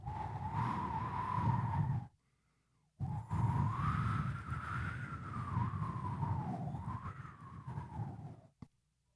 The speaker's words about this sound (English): Shangang Lu, Hong Kong Road. Usually a very, very busy road, but obviously not today. Not for the foreseeable future. Great to bike, though. Look at that. You can hear the wind whistling in between the buildings. It's so quiet.